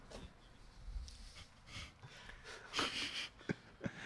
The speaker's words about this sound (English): I'm going to mute my microphone and blow my nose.